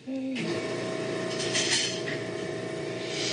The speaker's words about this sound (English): You're going to hear this machine turn on now, okay? It makes a loud noise.